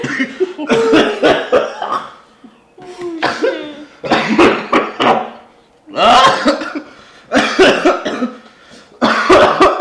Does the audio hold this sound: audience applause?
no